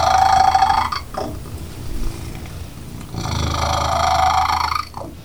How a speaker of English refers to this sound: And she purrs. In the household, they call that purr Rita's roar.